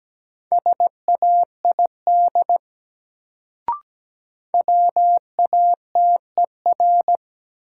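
Morse code beeps at 17 words per minute, sending common English words in a word drill, on a single steady mid-pitched tone, quick dots and longer dashes in two bursts separated by a pause and a brief sharp click. No voices.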